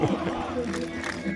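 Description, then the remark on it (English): A large crowd at an AEW wrestling appearance chants the wrestler Warhorse's name in unison, a steady, loud wall of many voices with a rough rhythmic pulse that holds throughout. “Nice Warhorse chant from the crowd here.”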